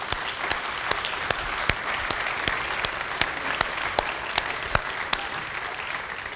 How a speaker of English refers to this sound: Let's give a round of applause to our women.